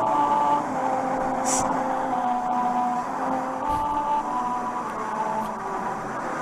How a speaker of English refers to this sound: I looked up a video of one of like Japanese musical road